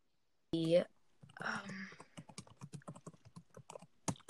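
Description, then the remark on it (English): Rapid clicking keystrokes on a Logitech wireless computer keyboard, fairly crisp, in an uneven typing rhythm for a couple of seconds, after a brief burst of voice at the start. “I'm gonna stick with the Logitech here. Try to keep a theme. Is one of the Logitech keyboards.”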